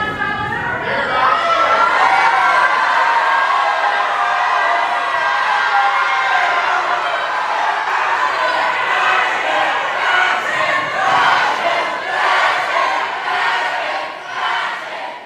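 A legislative gallery crowd in the House erupts in loud chanting and shouting, including shouts of 'fascists', as Representative Pearson's vote comes down, many voices merging into a dense, sustained roar that barely lets up for the whole stretch.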